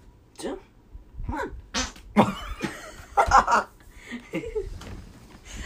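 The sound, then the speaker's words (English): A loud, sputtering fart breaks out in the middle, surrounded by people talking and bursts of laughter. “You're making me laugh so hard at the fart.”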